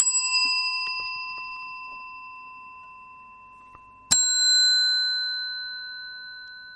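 A small pink bell rings twice, clear, each strike leaving bright metallic tones that fade slowly; the second ring comes about four seconds after the first, with no talking.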